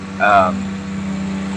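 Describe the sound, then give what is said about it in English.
A tractor drives past, giving off a billow of smoke. Its low, steady engine rumble drones throughout. A brief louder tonal burst comes near the start before the hum settles at an even level. “I'm watching the tractor drive by, and he's creating a billow of smoke as he drives past.”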